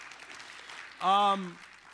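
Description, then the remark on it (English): An audience at an early church service claps for its peer group leaders in a light, scattered way, a soft patter of hands that tails off as a single voice briefly sounds over it. “I love the early service clapping.”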